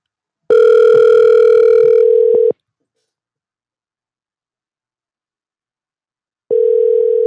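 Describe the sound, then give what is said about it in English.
An outgoing phone call's ringback tone, heard through a phone connected over Bluetooth: a steady electronic buzz rings for about two seconds, falls silent for four, then starts ringing again, loud and clear with no voices. “we're going to give him a call. Stand by. I'm going to unmute the phone.”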